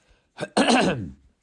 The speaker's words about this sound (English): So, I figured out what's going on with me with this cough and everything. It's just that, you know, I feel like my daughter keeps coming home from school. She catches colds and then she gives them to my son and they just keep giving them back